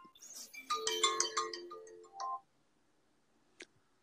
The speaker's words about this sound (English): Okay. Sorry about that, guys. I forgot to silence my phone. Thought I had.